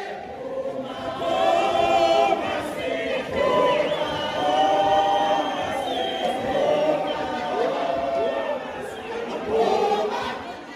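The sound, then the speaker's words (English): A large crowd at the Olive Center in Durban in June–July 2022 chants "Puma, Puma Sihle" in unison for Sihle Zikalala's bid for re-election as KZN chair of the ANC, many voices rising and falling together in repeated sung phrases that carry on loudly and steadily for about eleven seconds. “So if you were in Durban, right, in June, July 2022, a year from the July unrest, of course, what you'd be hearing if you're at the Olive Center is Puma, Puma Sihle, Puma.”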